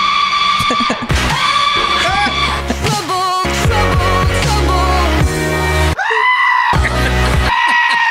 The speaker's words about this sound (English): Those are the goats. Oh my gosh.